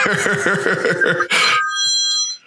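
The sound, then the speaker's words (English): A phone rings with a rapid, repeating electronic tone pattern, interrupted by a short harsh burst like a cough, then fading into thin, sustained high-pitched tones. No one speaks. “Oh, fucking hell, who's that ringing your NASA again?”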